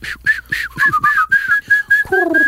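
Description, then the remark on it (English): Someone whistles an imitation of a carry-on bag chirping like birds: a quick run of about ten short, high, bright chirps in a steady rhythm, fairly loud, with no talking. “So he's got a carry-on bag that's chirping.”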